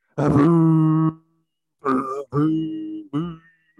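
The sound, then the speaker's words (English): Right after a 2021 NFL draft pick is announced, a single voice lets out a long, loud, low boo, then three shorter booing groans after a pause. It sounds like one person imitating a booing draft crowd rather than an actual crowd. “Are you booing? I can't tell if you're booing or cheering.”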